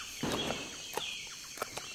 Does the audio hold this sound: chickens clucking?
yes